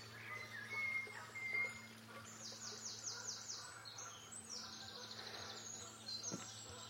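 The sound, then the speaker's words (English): Layered birdsong pours from several birds at once in a woodland, bright trills and chirps overlapping, with a steady low hum beneath and no one speaking. “Listen to that cascade of birdsong.”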